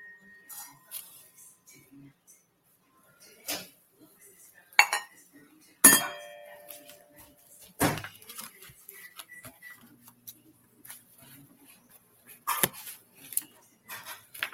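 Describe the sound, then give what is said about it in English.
A small bell dings with a bright, short ringing tail, surrounded by scattered metallic clinks and light clatter at irregular intervals, with no talking. “Sorry, gotta ding my bell.”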